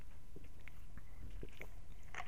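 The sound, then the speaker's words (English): Someone takes a quiet sip of a drink, with soft wet mouth clicks and a swallow, hushed, no talking. “I'm going to take a sip of beverage here.”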